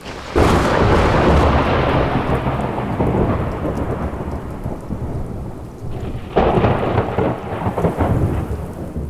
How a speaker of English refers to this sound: The storm turns out to be a hurricane that rages for 2 days. Rain pours down as lightning fills the sky and winds pound the landscape.